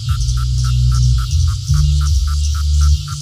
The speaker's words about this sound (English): The males use it to attract their silent female counterparts. These males are collectively referred to as a chorus of cicadas.